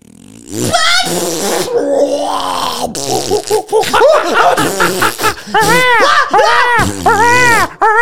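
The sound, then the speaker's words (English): A person vocally imitates a long, drawn-out fart, a continuous sputtering and warbling that rises and falls in pitch for several seconds, with snickering laughter mixed in. “And this fart. Yeah. It's everything you could imagine. So it just starts out friendly, yeah, and then it's like...”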